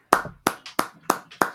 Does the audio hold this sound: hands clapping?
yes